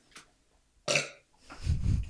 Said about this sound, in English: I have to burp.